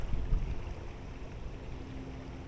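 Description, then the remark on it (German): Steady outdoor lake ambience with a low rumble of wind blowing across a bay and gentle waves washing onto the beach, fairly quiet and continuous, with no voices. “Die Wellen laufen sanft an den Strand und der über die Bucht wehende Wind kühlt dein Gesicht.”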